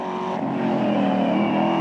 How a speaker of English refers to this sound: Jackson Pollock touched his foot to the gas of his green Oldsmobile convertible, pressed down harder, and just kept pressing.